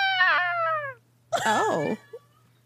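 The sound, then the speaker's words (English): Two clear meows from Iggy the cat, separated by a short pause: the first smooth and falling, the second longer and warbling, over a faint steady hum. “Meow. You're so talented. So talented.”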